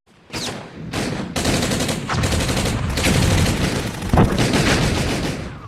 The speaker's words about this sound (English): As the battle raged on, finally the screen went to black and the music started to fade. The sounds of gunfire and metal upon metal could be heard as the battle raged on.